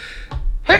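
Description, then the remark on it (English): A single sneeze: a short, soft intake followed by a sharp, loud burst of breathy noise, with no talking around it. “Sorry, that was a sneeze.”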